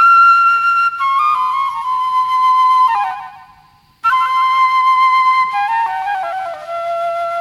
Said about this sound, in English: when you watch that film Bamako, there's the whistling of the train at key moments